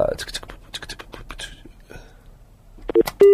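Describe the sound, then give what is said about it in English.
Phone keypad tones beep near the end, a short pair of electronic pips followed by a louder sustained tone, after a stretch of soft, breathy scratching and rustling. “I was trying to call that moany old woman and I called your number by mistake”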